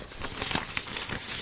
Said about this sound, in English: Why did you rustle paper there? It's a paper iPhone.